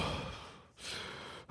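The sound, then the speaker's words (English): Heavy breathing in a horror film scene: a long airy inhale-exhale cycle, a brief pause, then another drawn-out breath, loud and breathy with no talking. “And we hear the breathing.”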